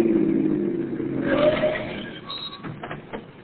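car approaching and stopping

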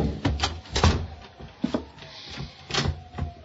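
closet door being closed

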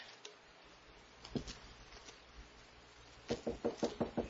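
knocking on a door

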